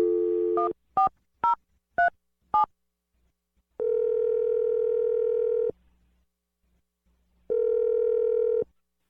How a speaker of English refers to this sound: We're going to dial the phone number for you right now.